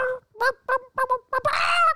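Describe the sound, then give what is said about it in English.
A chicken squawks as it is handled and put back: a quick series of short, clucking squawks, then one longer, louder, harsh squawk at the end. “Okay, let me put the chicken back.”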